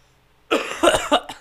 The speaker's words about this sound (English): Oh, can we take a break so I can cough?